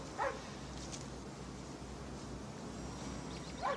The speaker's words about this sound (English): It's a dog! First to emerge is a dog named Chance. I know that bark, it is him!